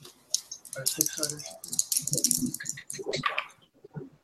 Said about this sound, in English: All right, now, all you guys can make a brains roll. That means roll as many dice as your brains stack.